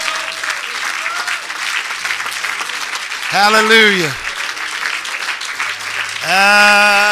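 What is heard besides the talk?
audience clapping hands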